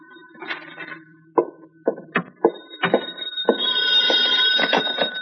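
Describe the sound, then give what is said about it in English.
An old-fashioned telephone in a flat rings at 11 o'clock at night with a shrill, buzzing bell, preceded by a few sharp clicks and knocks; the ringing grows steady and insistent toward the end, with no voices. “It was 11 o'clock that night when the telephone rang in my flat.”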